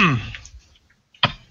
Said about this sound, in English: breaks into a coughing fit.